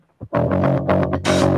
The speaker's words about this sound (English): Oh, it's that. It's the bass. It's slap of the bass.